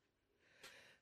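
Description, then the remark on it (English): A single sneeze: a short drawn-in breath builds up, then a sharp, noisy burst of air that trails off quickly. It is fairly quiet, with no talking. “Bless you.”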